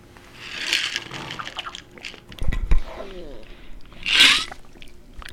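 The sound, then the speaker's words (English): Wet swishing and gurgling of water sloshed around inside a mouth, with a few short bursts of sloshing, a soft low thump, and a brief hiss near the end. “I appreciate that you swirled it around in your mouth.”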